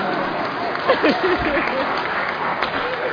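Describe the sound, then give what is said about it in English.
An audience claps their hands for a pair of visiting grandparents in steady, dense applause that fills the whole stretch, with a few voices briefly calling out over the clapping. “After having our kids in Cincinnati, Ohio for over a month and a half, can you guys just clap your hands for them, please?”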